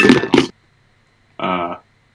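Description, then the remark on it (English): Two quick clattering knocks as a pair of glasses is knocked off onto a hard surface, followed after a pause by a short ringing, tonal sound. “Just knocked my own pair of glasses off there.”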